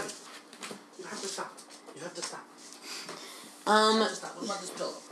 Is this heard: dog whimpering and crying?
yes